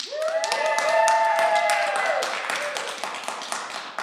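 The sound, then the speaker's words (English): A small family cheering section claps and cheers at a recording session: quick irregular handclaps mixed with rising, high whoops and shouts of several voices, loud at first and tapering slightly toward the end. “You came to our recording session today with a full family cheering section.”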